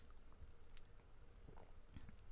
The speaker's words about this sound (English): Well, let's see. Let me get just another little sippy sip.